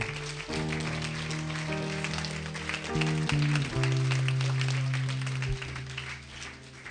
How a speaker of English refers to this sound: Let us give a hand to Jesus. Let us clap our hands to Jesus and glorify Him.